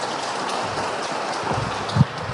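An audience claps to welcome a speaker giving a talk on women in the British Merchant Marine, a dense, steady patter of many hands that holds an even level throughout, with a single low thump near the end and no talking over it.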